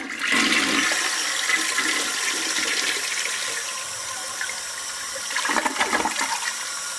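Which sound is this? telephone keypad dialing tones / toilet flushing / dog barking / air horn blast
toilet flushing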